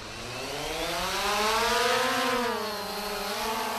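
A small drone mounted with a GoPro camera lifts off over a field on the outskirts of Nairobi, Kenya, its rotors whining steadily, the buzzing pitch climbing, wavering and dipping slightly, then rising again as it holds a low hover. No one speaks.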